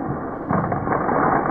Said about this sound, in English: And also just has the regular sound. It's not all scored up. 2, 3, action. Oh, I guess it's in slow motion. It sounds like gunshots, it doesn't does, it? It does, yeah.